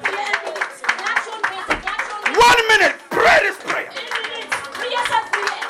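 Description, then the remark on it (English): A crowd claps hands in a steady, continuous patter while praying for a minute, beneath loud, fervent voices praying and shouting, with the clapping partly masked by the speech. “clap your hands and pray now.”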